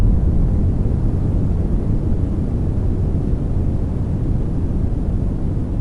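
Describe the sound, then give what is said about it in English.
A steady, deep rumbling focus noise with energy concentrated in the low end, like tyres humming on a highway, continuous and unchanging with no voices. “It sounds like highway driving. The rumbling of the humming of the tyres on the road.”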